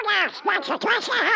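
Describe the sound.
A raspy, nasal cartoon duck voice quacks out a quick, unbroken run of garbled squawking syllables, loud, with nothing else behind it; a human voice imitating a duck.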